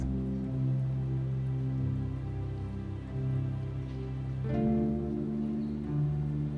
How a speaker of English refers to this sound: And feel each raindrop as it gently lands on those rocks.